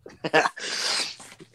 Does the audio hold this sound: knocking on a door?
no